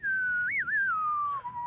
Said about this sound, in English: That's impressive to whistle on cue too, just quietly.